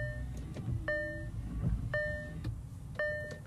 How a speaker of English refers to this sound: Alright, that beeping noise was my car, if any of you paranoid fuckers were wondering.